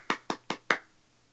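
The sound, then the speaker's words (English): Four crisp hand claps in a quick, even rhythm, fairly loud, with no voices, like a small solo round of applause. “Yeah, round of applause.”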